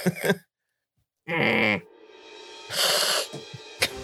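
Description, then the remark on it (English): A voice imitates a reptile creature's cat-like meow: a loud, drawn-out, wavering yowl, followed by a breathy, hissing vocal burst and a few short grunting sounds. “It sounds more like a cat than a... I like it. A meow.”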